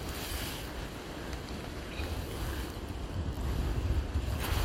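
Wind blows across the microphone outdoors in autumn rain while a photographer takes long-exposure shots, a steady rumbling roar with low buffeting that grows slightly louder toward the end. No one speaks.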